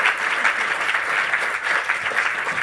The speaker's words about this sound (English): Let's welcome, well, without further ado, let's give a big round of applause to Janet Ellis and Lorna Gibb.